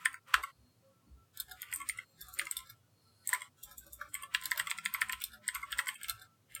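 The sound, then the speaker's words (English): Rapid, clacky keystrokes on a computer keyboard as a person looks something up, coming in uneven bursts with brief pauses, fairly crisp, with no one speaking. “I love your clacky keyboard.”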